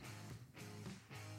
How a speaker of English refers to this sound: Oh, Lord, that was a pork chop burp supreme on that one.